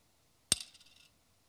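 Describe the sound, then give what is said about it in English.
Small copper coins drop into an offering box with a single sharp metallic clink, followed by a bright, shimmering ring that fades within about half a second, clear against near silence. “And then he saw a poor widow, put in 2 small copper coins.”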